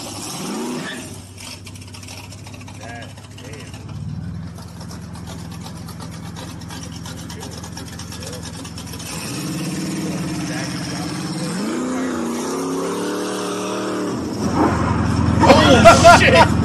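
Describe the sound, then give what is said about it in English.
A car engine idles with a steady low rumble, then revs up in rising, whining surges that grow louder toward the end. “This guy in the car he was doing too much.”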